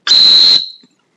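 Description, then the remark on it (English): A single sharp, high-pitched dog training whistle blast, loud, held steady for about half a second with a breathy edge, then cut off into silence; a whistle used to stop a retriever at 100 yards on a windy day or in running water. “On a windy day to stop a retriever lunging through running water on a water blind at the same distance of 100 yards, I'm likely to use a whistle like.”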